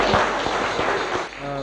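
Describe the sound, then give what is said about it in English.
A crowd claps together for Jesus in a dense, steady wash of applause, with a beat accented roughly three times a second; the clapping fades near the end as a voice comes in. “So we'll give Jesus a clap.”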